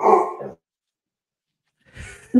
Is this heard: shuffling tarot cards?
no